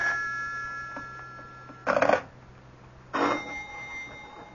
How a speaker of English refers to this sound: Do something about that confounded phone. I can't, Mama. It'll just keep ringing. Well, take the receiver off the hook or something.